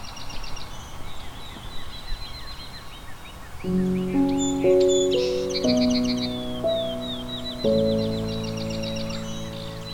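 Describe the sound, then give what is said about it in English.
A chorus of several birds singing on a warm, sunny spring morning, with overlapping high chirps and rapid trills throughout. Soft, sustained musical tones come in partway and play beneath the birdsong. “A warm, sunny morning in spring can inspire a diverse chorus of bird songs.”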